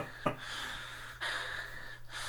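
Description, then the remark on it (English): A woman breathing heavily, a sharp gasping intake near the start followed by long, airy breaths, with no talking. “I'd watch every film if it started with a woman breathing like that.”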